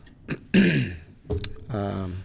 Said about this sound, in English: Just had to clear my throat here.